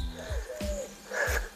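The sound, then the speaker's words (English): Wood pigeons coo outdoors in La Heredia on a cloudless, almost windless day of about 18 degrees Celsius, a soft, low, breathy rhythm of a few hooting notes repeating one after another over a faint steady background hum, with no one speaking. “It is gorgeous, not a cloud in the sky, hardly a breath of wind, and you can hear these birds all around me, wood pigeons, serens.”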